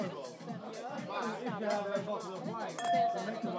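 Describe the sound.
Wine glasses of Chablis clink together in a toast, a single bright chime that rings on for a moment near the end, set against lively background chatter and voices.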